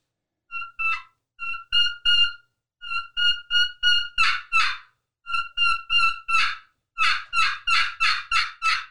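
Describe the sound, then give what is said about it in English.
A specialty turkey call made only for the kee-kee run plays a kee-kee run imitating a lost turkey: short groups of high, thin whistled peeps, broken by bursts of raspy yelps and ending in a quick series of loud yelps. “But here's the kiki run. This is would be a lost turkey.”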